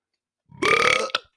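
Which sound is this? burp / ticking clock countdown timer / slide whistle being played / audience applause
burp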